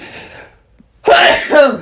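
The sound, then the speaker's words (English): A single loud sneeze bursts out after a brief pause, following some quieter muffled sound. “That was a COVID sneeze right there.”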